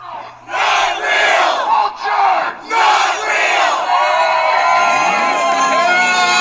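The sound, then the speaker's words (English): A loud crowd at a Birds Aren't Real rally in Springfield, Missouri, United States, shouts and cheers in rhythmic bursts, like a chant, then swells into one sustained roar of many voices yelling together. “Back over in the United States in Springfield, Missouri, we had the big rally for birds aren't real.”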